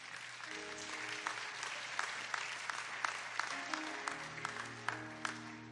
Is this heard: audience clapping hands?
yes